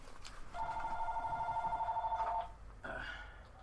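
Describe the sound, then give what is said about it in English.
A cell phone rings with a steady, warbling electronic tone lasting about two seconds, then a brief pause before a second ring starts, clear over quiet room noise. “Is somebody calling me? Cell phone.”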